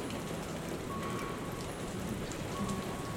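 Steady rain pours down onto a hard street surface, a dense, continuous hiss of drops with a low rumbling wash underneath. A faint tonal hum threads through the downpour.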